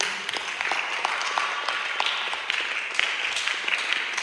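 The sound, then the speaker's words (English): An audience at a sermon applauds steadily, many hands clapping in a dense, continuous patter for several seconds, fairly loud, with no one speaking. “Oh, if you are clapping, clap well.”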